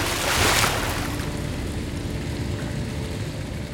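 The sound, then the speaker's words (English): A steady, loud roar of rushing water from a great waterfall pouring into a cerulean pool, with a brief surge of hiss near the start and no voices. “Nimue beckoned to him, then slipped through the wall of roaring water.”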